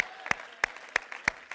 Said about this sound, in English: Somebody clap your hand and shout yes.